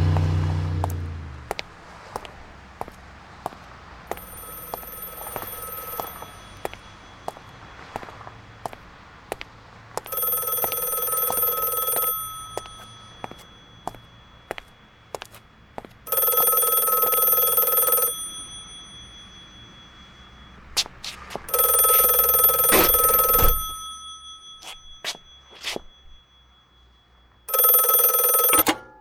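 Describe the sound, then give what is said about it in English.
An old-fashioned telephone bell rings loudly in repeated two-second bursts separated by pauses, over a low background hum with scattered faint clicks; nobody speaks. “I thought you'd never answer the phone. I was about to hang up.”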